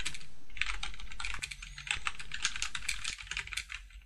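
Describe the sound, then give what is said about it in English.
A dense, overlapping clatter of keys as several people type on computer keyboards at once, fast and continuous throughout, steady in loudness, with no voices. “As everybody starts typing at once.”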